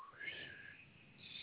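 A faint, breathy whistle: a thin, airy tone that slides upward and then wavers along, with no other voices.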